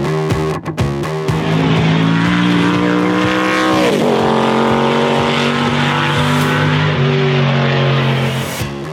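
A car engine revs loudly, its pitch dipping and climbing again midway before holding a steady, throaty drone. No voices are heard.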